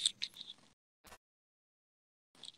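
Soft rattling, like a pill bottle being shaken, comes in three bursts: a longer shake, a brief one, then another short shake after a pause. It is fairly quiet, with no talking.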